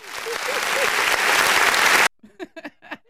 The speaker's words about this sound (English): Wait, I got to give you another. Wait, you got to get another applause. Hold on.